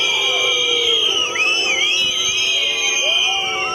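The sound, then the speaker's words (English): A large crowd boos a politician steadily and loudly for several seconds, a dense continuous roar of voices with shrill whistle-like tones and shouts rising above it. “He's being booed, like, everywhere.”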